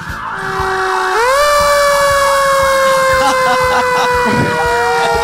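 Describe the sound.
A loud fire truck siren wails steadily, its pitch rising and holding in a long sustained tone, with faint voices underneath.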